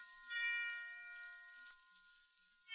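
Christmas bells ring with a sustained, shimmering resonance, their overlapping tones hanging in the air without a break. They sound soft, and no one speaks.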